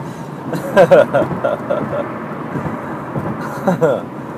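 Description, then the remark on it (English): A steady low rumble of road noise fills a car interior, continuous and fairly loud, while a person talks over it throughout. “Oh, wait, I have to stop listening to myself talk to myself in my car to record myself talk to myself into my car for me to listen to later.”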